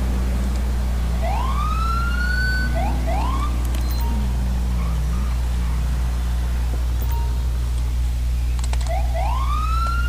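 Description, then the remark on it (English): Short upward-sweeping police siren chirps from a police Camaro in a driving video game as it pulls up beside a speeding car, loud, in a few quick bursts spaced across several seconds, over a constant low rumble of engine and road noise. “So let me go ahead and bloop him.”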